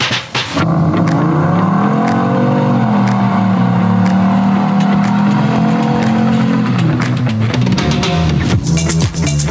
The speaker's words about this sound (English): those car sounds, by the way, were sent in by Steve. Those were, and I've talked about these before, those were wedding burnouts